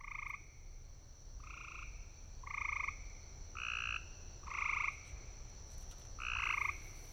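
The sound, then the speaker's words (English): A gray tree frog calls in a series of short, loud musical trills, about six bursts spaced a second or so apart, ringing out over a steady low background hum. “Those are gray tree frogs, and we have those in the listening area, and they can go crazy vocalizing in our backyards”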